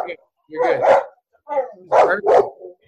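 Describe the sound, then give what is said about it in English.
A big female Belgian Malinois barks loudly in a few sharp bursts: a pair of quick barks, a pause, then three more in rapid succession. “She's a big, scary dog. She is. Yeah. She's a Malinois.”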